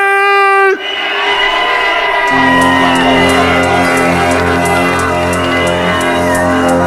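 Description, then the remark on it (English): A loud crowd at Innovation cheers, shouts and whoops continuously for the next DJ, over booming electronic music with a steady ticking beat, opening with a brief horn-like blast before the bass drops in. “Where's the noise for the number one,”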